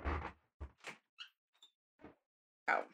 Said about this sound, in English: Oh, okay. Thank you for waiting for me as I close the door.